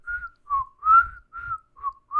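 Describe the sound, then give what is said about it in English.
A person whistles a short melody of about six clear, gliding notes in a steady, bouncy rhythm, fairly loud, with no talking. “I can't whistle, or I would have.”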